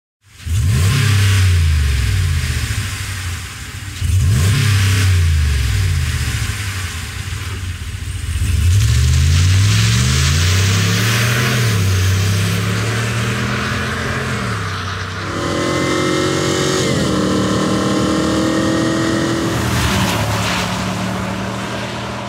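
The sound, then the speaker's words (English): A truck engine with a stock exhaust revs repeatedly, rising and falling in pitch, then settles into a steady, louder drone. Loud, with no voices. “I'm going to play a stock truck exhaust, and then I'm going to play the same truck with a Borla exhaust, and you're going to tell me what truck it's on.”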